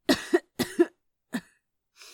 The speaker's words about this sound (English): He lit the bowl and inhaled, the aromatic smoke filling his lung. Exhaling, he coughed a bit.